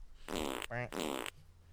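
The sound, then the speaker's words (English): A loud fart sound effect: two buzzy, sputtering blasts separated by a brief squeaky tone, lasting about a second in all, with no one talking. “I wish I could give you a longer fart, but we replaced it.”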